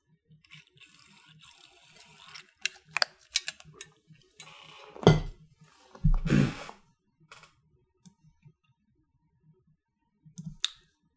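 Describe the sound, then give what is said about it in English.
Someone takes a brief drink of water from a glass: faint clicks and taps of the glass, then two louder sipping or gulping bursts, followed by a few quiet swallows and a final soft clink. “Excuse me as I just take a brief drink of water.”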